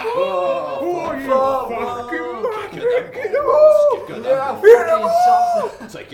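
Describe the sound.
A voice imitates the ambient noise of a crowd at a team game, a continuous babble of murmurs, whoops and chuckling sounds rising and falling in pitch for several seconds at a fairly loud, steady level.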